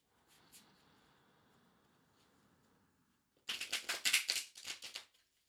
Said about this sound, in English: So just take a moment and tune in as I shuffle the cards and connect to the cards by hearing them being shuffled.